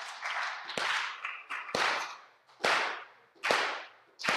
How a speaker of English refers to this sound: Okay, now let's do this. You guys clap with me.